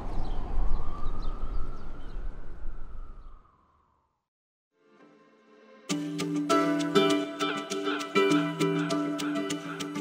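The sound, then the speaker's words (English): An ambulance siren wails past over busy street traffic in front of Bellevue, headed for the ER, its pitch sliding downward as it recedes, then cuts out into a brief silence before music begins. “While I was doing my interviews in front of Bellevue, I stood in that little concrete park and looked across the street, and I could see the tent in front of Bellevue, and one ambulance after another going by, headed for the ER.”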